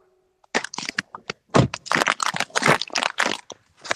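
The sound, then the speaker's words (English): A plastic gummy bear packet crinkles and crackles in a dense, irregular run of sharp, bright bursts that start after a short pause and continue steadily to the end, with no voices. “It's a pack of gummy bears.”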